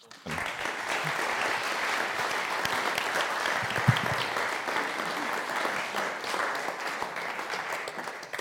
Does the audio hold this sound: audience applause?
yes